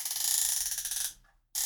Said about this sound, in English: You hear that? No. That's me adjusting my lumbar support.